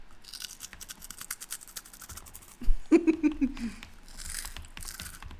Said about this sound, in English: I love the sound of this keyboard.